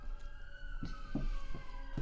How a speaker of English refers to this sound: Hello, sirens. Yeah. Don't worry about that. It's just like a triple murder or something. It's fine.